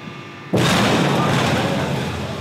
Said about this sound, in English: First and foremost is the vacuum tube. Have you ever seen a tank implode?